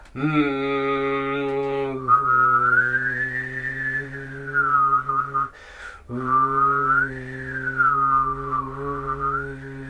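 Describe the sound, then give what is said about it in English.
A single voice performs duophonic overtone singing, two notes at once: a steady, buzzing low drone with a clear whistle-like melody gliding above it, pausing briefly midway before resuming, fairly loud. “So that's duophonic, two notes.”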